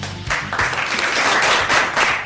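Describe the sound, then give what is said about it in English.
A crowd applauds steadily for a couple of seconds, dense overlapping claps forming a loud, continuous wash of sound with no voices. “Don't applause, three, please throw money.”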